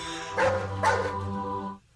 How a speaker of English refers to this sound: Please answer in the form of barks. One for eat it, two for beat it.